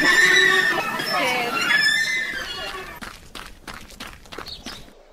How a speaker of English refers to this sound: I mean, what are you hearing? Animals? Yeah, birds, yes. Yeah. That is correct. Yeah. Yeah, you're right. Yeah. What else did you hear? I did hear a horse.